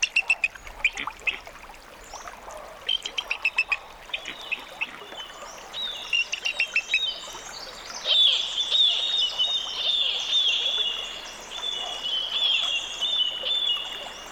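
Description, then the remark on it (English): A fledgling bald eagle learning to fish for salmon near Glacier Bay, Alaska, gives high, thin chittering calls in quick repeated bursts, then longer piping cries that carry on steadily, with a soft watery trickle underneath and no one talking. “Bernie Krause recorded this fledgling bald eagle learning to fish for salmon near Glacier Bay in Alaska.”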